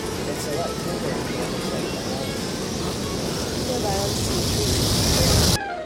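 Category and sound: vehicle, train passing by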